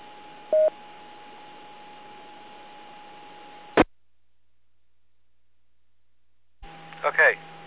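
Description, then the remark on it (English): A short DTMF tone burst over a steady hiss and hum of a radio channel, dropping the autopatch after a practice 911 phone call, then a click and dead silence; the carrier returns briefly with a couple more tone bursts. “dropping the patch.”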